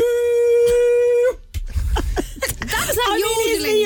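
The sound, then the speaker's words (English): A person lets out a loud, sustained vocal roar at one steady pitch, then breaks into rising and falling warbled yells, a yodel-like shout with sharp pitch jumps. “Different form of yodel, but it's the same concept.”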